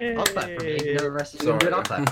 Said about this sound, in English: We do claps. We do claps.